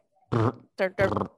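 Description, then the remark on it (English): Someone imitates a burp with their voice: three short, gravelly, croaking bursts in quick succession, fairly loud. “The one that goes burp.”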